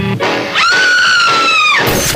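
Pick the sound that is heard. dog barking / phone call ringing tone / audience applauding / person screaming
person screaming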